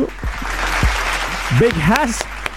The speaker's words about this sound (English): Hold on, let's give him a round of applause up in this place. Where's the round of applause?